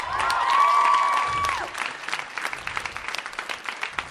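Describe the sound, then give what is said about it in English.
A crowd claps and cheers loudly, giving Jesus a big applause, with a sustained whistle or cheer held steady over the first second and a half, then the applause continues as dense, crackling clapping that gradually thins. “Now, can we give Jesus a big applause tonight?”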